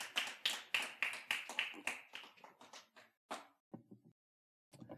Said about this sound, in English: Give God a round of applause right there where you're seated.